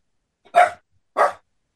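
Two sharp dog barks about half a second apart, fairly loud, with silence around them and no talking.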